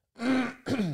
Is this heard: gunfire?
no